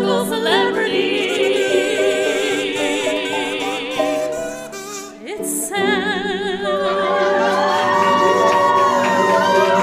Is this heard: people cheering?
yes